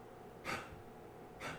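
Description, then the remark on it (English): A female dog with kennel cough gives two harsh, breathy hacking coughs about a second apart, each a short rasping burst with no talking around them. “She's got kennel cough right now.”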